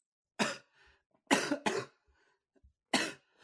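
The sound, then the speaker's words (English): A person coughs four times, harsh and loud, with short pauses between and two coughs coming in quick succession; no one speaks. “Yeah, I was going to say, you want to hit that cough button while you're at it?”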